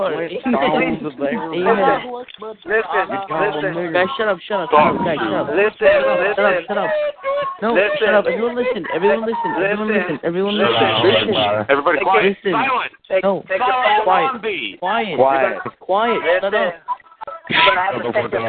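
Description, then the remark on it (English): Thin, band-limited voices come over a phone line during a group prayer call, talking almost continuously with a hollow echo caused by a participant's phone being on speaker, and no other sounds around them. “You're getting the echo because somebody got their phone on speaker.”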